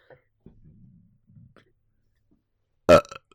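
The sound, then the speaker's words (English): A low, muffled burp rumbles for about a second, followed after a pause by one short, loud, harsher burst that trails off quickly. No talking. “Yeah, you saw me burp.”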